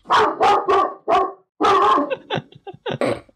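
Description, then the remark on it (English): A dog barks loudly, four sharp barks in quick succession, then a longer bark followed by a string of shorter, softer yips and grumbles. “dog is fuming about the oil ads.”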